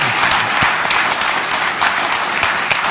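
An audience applauds in a steady, dense round of clapping, loud and continuous for the whole stretch with no voices over it.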